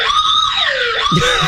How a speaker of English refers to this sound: We thought for sure the external alarm did not go off because there was no way we could have missed that, right? Being that loud. This is the external alarm.